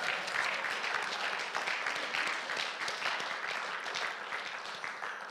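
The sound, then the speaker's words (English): A church audience bursts into steady applause to thank its pastors and youth director, a dense wash of many hands clapping at an even level throughout, with no voices standing out above it. “We should applaud now.”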